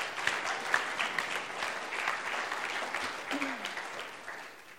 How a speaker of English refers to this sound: And so as she comes up, could you guys clap for her? She's brave to do this.